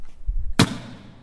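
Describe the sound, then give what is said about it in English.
A hollowed-out cast prop, once a solid pour, is dropped and lands with a single sharp, solid thud, its sound dying away quickly after a few faint low bumps beforehand. No one speaks. “That's a good thud.”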